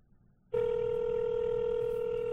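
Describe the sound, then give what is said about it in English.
A telephone line tone from calling an old toll-free number for a fart bag, which turns out to be disconnected, begins abruptly after a short quiet moment and holds as one loud, steady, buzzy pitch without breaks until the end. “Let's see if this number still works.”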